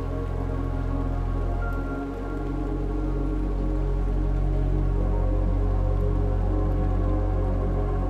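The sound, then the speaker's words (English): Steady rain patters onto a pool's surface, a continuous dense texture of small drops with a low, even rumble underneath, moderately loud with no voices. “Relaxing Raindrops in the Pool”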